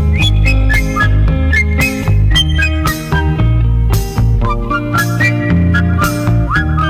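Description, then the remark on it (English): A high, sliding whistled melody rides over a loud, full band playing steadily, with the whistling phrases repeating in short bursts throughout. “I think this record is much too quiet, and I cannot hear you whistling the way you should be.”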